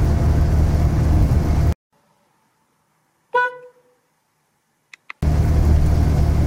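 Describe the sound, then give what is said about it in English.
A classic car engine drones loudly while driving, cutting out into near silence midway, where a single short horn toot and a couple of faint clicks sound before the engine noise returns. “So I'm on my way there to do a quick swap and try out the A40.”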